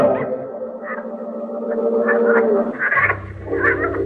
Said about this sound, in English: The bayous and the jungle have crept close to it. And at night, the cries of strange birds, the croaking of giant frogs can be heard.